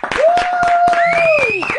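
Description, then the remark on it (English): A slow clap: a steady run of about seven sharp, evenly spaced hand claps, loud and alone, with a sustained whistling tone gliding up and down over them. “She gets the slow clap.”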